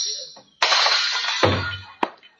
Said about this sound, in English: Oh, no, don't pull that tablecloth. You'll smash all those dishes.